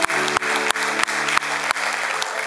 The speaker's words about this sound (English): Yeah, we can clap, praise God.